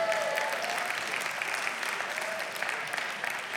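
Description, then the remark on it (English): Women in an audience clap steadily after a joke about women speaking 20,000 words a day and men 7,000, a dense, even wash of many hands at a constant moderate level with no pauses and no voices standing out. “I was looking out there and I didn't see any man clap on that.”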